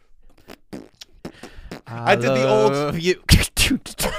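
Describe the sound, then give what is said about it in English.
A voice makes beatboxing-style mouth noises: quick percussive clicks and pops, a sustained buzzing, humming tone in the middle, then sharp, breathy bursts, fairly loud. “No, I started beatboxing.”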